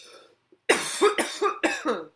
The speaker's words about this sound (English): I have to cough.